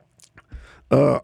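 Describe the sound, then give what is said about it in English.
Soft mouth clicks and a brief slurping sip of water, followed by a gulp and a short, loud throaty exhale. No words are spoken. “Let me take a sip of water, folks.”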